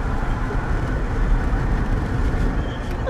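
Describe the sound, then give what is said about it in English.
A steady, loud roar of a truck driving with a window open, deep engine and road rumble mixed with rushing wind that stays constant throughout, with no one talking. “We gotta let the weed smoke out of the truck quick.”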